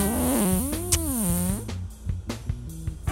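A long, buzzy fart rings out loud, its pitch wobbling up and down for about a second and a half before giving way to scattered soft knocks and clicks.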